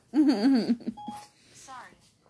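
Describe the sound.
A brief electronic chime of the Siri voice assistant waking up on a phone sounds right after a loud, wavering vocal outburst, followed by quieter voices talking.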